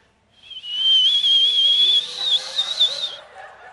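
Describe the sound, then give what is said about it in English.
A person whistles a long, shrill, steady high note with breathy hiss, imitating a boiling steam kettle; it holds for about three seconds, wavers briefly near the end, then cuts off. “You know, I just think like a steam kettle, you know. You keep that thing on the heat and the water starts to boiling in there.”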